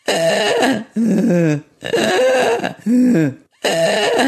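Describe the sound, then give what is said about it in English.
A person imitates the snoring of a 23-year-old cat: three loud, rough, raspy breaths alternating with two lower voiced, groaning tones in a steady back-and-forth rhythm, with no talking. “I had a 23-year-old cat who you could certainly hear snoring.”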